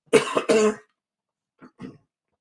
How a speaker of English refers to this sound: Okay. I hope y'all can forgive me for choking. I get excited. When I get excited, I think I yell, I choke, and then when I choke, I sneeze.